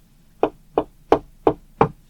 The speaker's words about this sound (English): I'll knock on the door.